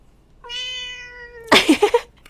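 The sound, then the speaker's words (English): A cat lets out one long, steady meow, then breaks into a few quick, raspy chirping sounds. It's fairly loud, with no one talking. “Thank you for singing your song to us.”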